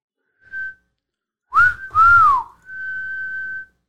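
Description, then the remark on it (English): A person whistles a dog-calling pattern to call their dogs: a short note, two quick swooping notes, then a long steady held tone, clear and alone with no talking. “My whistle for my dogs is...”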